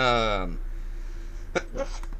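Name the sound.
sneeze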